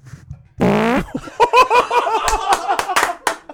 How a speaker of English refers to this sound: Oh, I have to fart. Should I do it in the microphone?